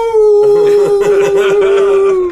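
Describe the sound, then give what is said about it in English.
A person imitates a wolf howl: one loud, long, steady note that sags slightly in pitch over about two seconds, with rough background noise rising beneath it. “Naked in front of the mirror, just going, ow!”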